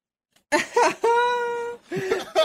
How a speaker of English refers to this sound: I thought that was a dog at first, bro. Dude, everybody did. I thought that was a dog. A fucking goat.